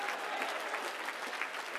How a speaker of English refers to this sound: Oh, clap your hands for the blood of Jesus.